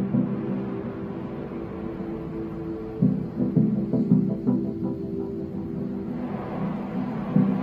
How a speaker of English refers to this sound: Coming up on 30 seconds into flight, the RD-180 is throttling down as expected. Engine response looks good. And Mach 1 Atlas 5 is now supersonic.